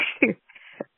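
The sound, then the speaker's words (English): A woman gives a couple of short coughs, a sharp burst followed by a smaller one a moment later, with a faint raspy breath between them. “Somebody give her a cough drop.”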